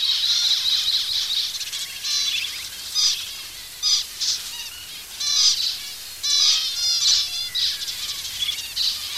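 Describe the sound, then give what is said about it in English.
A huge flock of thousands of zebra finches in a tree calling all at once, a dense, continuous chatter of high, nasal chirps and beeps with louder bursts swelling up every second or so, no voices. “you could not see the leaves for zebra finch. There would have been thousands of them there”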